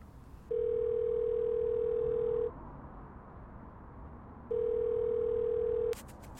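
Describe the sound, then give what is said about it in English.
A phone ringing tone heard from the caller's end of an outgoing call at 6 a.m.: two long, steady electronic tones of about two seconds each, separated by a silent pause, fairly loud over a faint background hiss. “It's ringing.”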